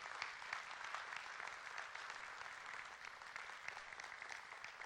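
A church audience applauds steadily to thank a guest for coming and helping, many hands clapping in a dense, even wash of sound that holds at a constant level for several seconds with no voices over it.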